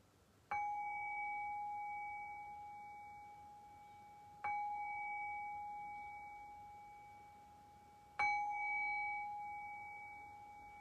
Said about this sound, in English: And in the next breath or two, we'll begin to shift away from the meditation practice and back into our conversational space. I'll do that. I'll cue that shift by ringing the bell 3 times.